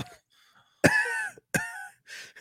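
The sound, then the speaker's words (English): A person imitates coughing: two loud, rough, voiced coughs about a second apart, each trailing into a strained groan, followed by a softer breathy exhale. “He's like sweating and coughing.”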